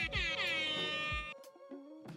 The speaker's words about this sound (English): Also look out for an appearance from a DJ air horn and some impromptu college football punditry.